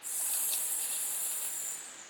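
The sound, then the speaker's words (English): A snake hisses in one steady, sharp, airy stream lasting about two seconds, fairly loud, fading slightly at the end with no voices. “One day, a sneaky snake slithered up to Eve.”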